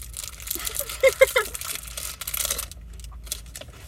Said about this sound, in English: I feel like we should talk about something because it's just like kind of silence and crunching for a fat second there.